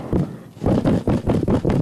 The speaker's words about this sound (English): That's me banging on a pizza box. Banging on a pizza box.